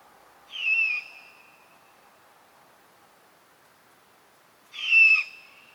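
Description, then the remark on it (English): Two harsh, raspy screeches from a great horned owl chick begging, each about half a second long and spaced roughly four seconds apart, over a faint steady hiss with no talking. “We have some forest in the backyard, and we had a resident family of great horned owls. I would hear that screech over and over after sunset, out in the dark forest.”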